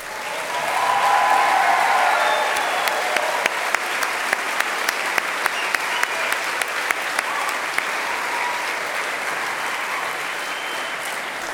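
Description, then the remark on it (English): Sustained applause from an audience at a Goshen College event for faculty, staff, administrators and neighbors: a dense, steady wash of clapping that swells in the first couple of seconds and then holds at a fairly even level, with a few sharper individual claps standing out. “And to all the faculty, staff, administrators, and neighbors who lead or teach or serve our campus, please stand for a round of applause.”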